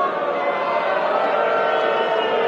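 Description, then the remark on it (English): A large crowd of sports fans boos an announcement about the Marquee Network loudly and continuously, a dense, sustained roar of many voices blending together with no pauses and no single voice standing out. “Believe me, you won't be booing about that in a year.”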